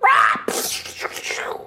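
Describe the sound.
A person imitates a griffin's eagle-like screech: a loud, high wailing cry for about half a second, followed by a raspy, breathy hissing screech that trails off.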